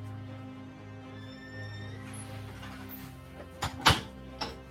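A door clunks shut near the end, with a couple of sharp knocks and latch clicks rising over a steady low hum; no one speaks.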